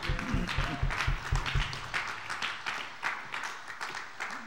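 A crowd at a service applauds with steady, dense clapping that runs the whole time. Deep, pulsing bass notes sound beneath it at first, then drop away, leaving the clapping alone as it softens slightly.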